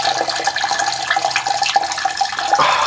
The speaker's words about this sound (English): I'm peeing. I could hear that. It's weird.